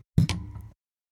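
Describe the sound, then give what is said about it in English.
Glasses clink together in a quick toast, two knock-like taps in rapid succession followed by a short, bright ring that fades within half a second. No voices. “When you hear the clink, drink.”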